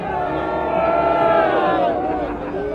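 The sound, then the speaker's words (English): A large rally crowd screams and boos together as Biden is shown on a screen, a sustained, loud roar of many overlapping voices, with rising and falling shouted tones and no single speaker standing out. “And then there were pictures of Alexandria Ocasio-Cortez on the screen and Biden kind of flashed on the screen, and people would scream and boo.”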